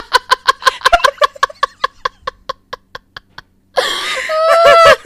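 An aggressive chicken that has been terrorizing bank customers in Louisiana clucks in a rapid, steady string of short pulses that gradually slow, then breaks into a louder, drawn-out squawking cackle near the end.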